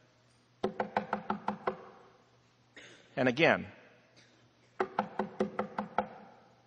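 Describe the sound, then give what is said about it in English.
Two rapid bursts of knocking on a wooden house door, about seven sharp, evenly spaced raps each, fairly loud, with a brief spoken phrase between them. “We knocked on the door. Knocked again.”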